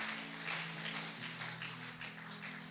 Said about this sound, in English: 2017 is going to be a great year, guys. Now you can clap.